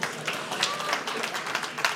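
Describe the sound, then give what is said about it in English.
A brief burst of applause from a crowd at a talk about electrosmog, dense overlapping claps filling about two seconds at a steady, fairly loud level, with some faint voices mixed in. “But the good news, I will give you many suggestions. Round of applause, yay!”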